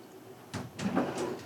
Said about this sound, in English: Open my drawer, get a mug. Oh, we have this drawer full of mugs.